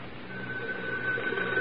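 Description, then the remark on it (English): A telephone rings with a steady, continuous electronic tone over a faint hiss of background noise. It is moderately loud, with no voices. “He should be making several phone calls right about now.”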